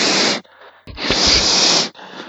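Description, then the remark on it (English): A person imitates a cat's hiss with their voice, two loud, breathy bursts of hissing noise separated by a short pause, with no other talk. “He's allowed to go and beat up other cats.”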